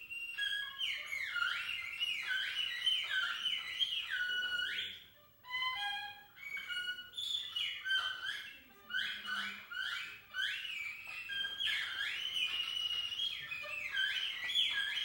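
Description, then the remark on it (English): A player improvises on a musical instrument, imitating bird calls with rapid, high warbling trills and chirps, nearly continuous and fairly loud, with a brief pause midway before the twittering flourishes resume. No one speaks. “This is the way that Liu Tianhua pictured the birds.”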